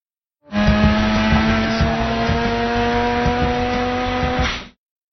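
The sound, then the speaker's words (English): A car drifts into traffic with a steady, loud engine roar and screeching tires, one continuous burst of about four seconds, with no talking. “It's like, hey, he's doing a pretty good drifting. Yeah, drifting into traffic.”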